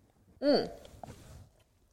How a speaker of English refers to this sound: So there's only a little bit left. So let's have a little sippy sip. We got a little sip sip.